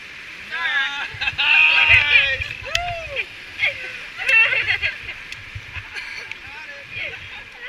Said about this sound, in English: Boat turns around, paddles back up river into the rapid. And there we are. The river's holding us. Paddle forward. Push.